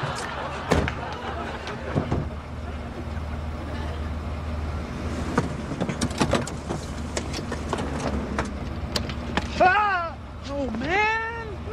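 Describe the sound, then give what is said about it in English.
The engine of Kramer's car, running on nearly empty, idles with a steady low rumble throughout, broken by scattered clicks and thumps. Near the end, brief high, wavering voiced sounds rise and fall over the hum. “Keep the engine running.”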